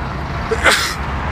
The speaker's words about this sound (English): Random sunlight sneeze. You know how the sun, when it hits you and you're just gonna sneeze?